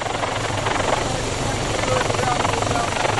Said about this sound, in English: Well, currently we're flying on the aeromagnetic survey. We've got a sensor mounted on a helicopter and it's flying a grid pattern across the area we have under permit, and it's collecting, well, measuring the magnetic field along those lines.